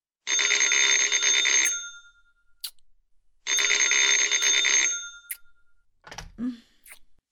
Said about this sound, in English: The phone's ringing. The phone's ringing. Oh, whoever it is won't give up.